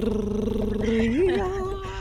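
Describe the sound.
A voice imitates a drum roll with a steady rolled-tongue trill that holds for about a second, then swoops upward in pitch and trails off into a sustained tone.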